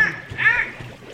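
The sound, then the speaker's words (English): A short splash and gurgle of water as a head is shoved under the water in a water trough, with two bursts of bubbling, sputtering sounds over about a second. “Would a dead man push your head under the water like this?”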